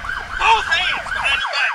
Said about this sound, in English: And it was on a cool night like this in March of 2019 that the people who live here were suddenly awakened to the sounds of sirens and the sights of flashing red lights.